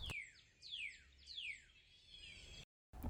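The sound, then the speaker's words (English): A bird calls repeatedly with sharp, descending chirps, about four in quick succession, clear over faint background noise, ending in a brief silence. “Oh, this bird isn't stopping with his kwee kwee kwee.”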